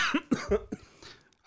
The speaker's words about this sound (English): I got so worked up and started coughing. Man, got to lay off those cigars, buddy.